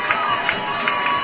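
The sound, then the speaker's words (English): A large crowd of Lions fans in the visiting section at a football game roars steadily, a dense wash of many voices cheering and shouting with a few louder bursts, sustained throughout without a break, making noise on their feet for the Lions defense on a big third-down play. “Great Lions crowd here today in the visiting section, getting up on their feet, making noise for this defense on a big third down play.”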